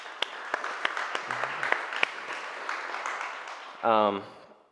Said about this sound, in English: I think we need to give them a round of applause and thanks for everything that they've done.